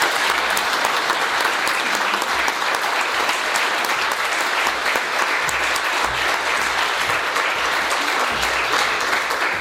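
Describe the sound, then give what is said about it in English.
A large audience applauds steadily for 25 scholarship recipients, a dense wash of clapping that stays loud and even for the full length without any speech. “Please give them a round of applause.”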